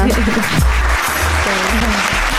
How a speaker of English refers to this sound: There we go. Quick round of applause for her there.